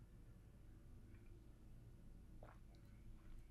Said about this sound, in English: Wow, I actually took a giant sip of water. That would have been great to do a spit take if I had a camera.